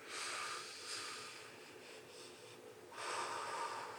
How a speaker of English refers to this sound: All the way in. All the way out. All the way in. All the way out. Just keep breathing in.